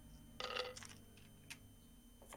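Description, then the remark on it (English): A large handful of dice, rolled for a stealth check in a game, rattles in a short, busy burst of clatter, followed by a few scattered clicks as they settle, fairly quiet, with no voices. “This is a lot of dice. I do not have enough dice!”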